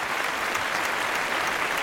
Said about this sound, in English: And healthcare workers, we owe them gratitude. We owe them everything, because you don't know what they have to go through on a day in and day out, you know? So, yeah, I'm going to give a little applause praise there. Praise to them.